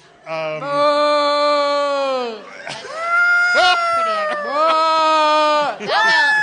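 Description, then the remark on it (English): A human voice imitates a whale call with loud, drawn-out wailing tones: one long sustained moan that sags downward, followed by several shorter swooping cries rising and falling in pitch. “For all you know, you could have just, like, pissed off a whale with that sound.”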